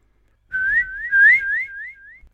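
A canary in a dim tunnel singing: a bright, high warbling run of quick, sliding notes that rise and fall in a continuous phrase lasting under two seconds, fairly loud and alone.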